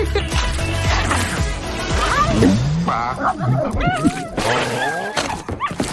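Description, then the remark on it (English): A dog, Clifford the big red dog, yips and whimpers while playing, in a rapid, excited run of high whines and short sharp yelps, rising and falling in pitch for several seconds over a busy, noisy background. “This dog is killing me.”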